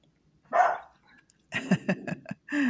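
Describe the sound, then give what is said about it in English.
A dog barks: one loud bark, a short pause, then a rapid cluster of sharp barks ending in a longer, drawn-out bark. No one speaks. “We'll have to wait until the dog decides to leave.”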